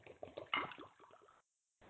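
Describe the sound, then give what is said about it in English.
Liquid pours into a glass as two drinks are poured, a gurgling, bubbly splash with a rising fill sound lasting over a second, then stopping abruptly before a brief faint noise. “I'm going to pour both of them so that way I can...”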